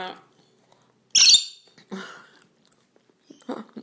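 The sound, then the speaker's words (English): A chicken, one of several chooks eating the speaker's breakfast, lets out one loud, shrill squawk, followed by a couple of softer, lower clucks after short pauses. “At least you feed your chooks after you've eaten.”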